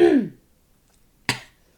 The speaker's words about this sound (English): Hang on. Let me clear my throat because I am still recovering from an illness.